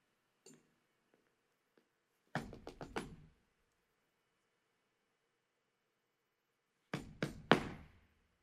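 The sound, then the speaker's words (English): Two sets of three firm, sharp knocks on a door, separated by several seconds of near silence, with a faint tap or two before the first set. “In my head, I saw my addictions and my generational curses coming to the door like this.”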